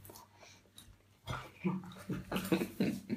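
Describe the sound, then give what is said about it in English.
Two dogs, Leo and Daisy, bark excitedly as they rush to the door together, a rapid, irregular burst of overlapping yaps and woofs that starts after a short quiet stretch and keeps going. “They rushed to the get door together, barking crazily.”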